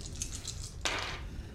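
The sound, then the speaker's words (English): Dice clatter on a table: a series of light, rapid clicks, then a sharper rattling burst that quickly fades. Fairly quiet, with no talking. “Oh, you just made it. That dice.”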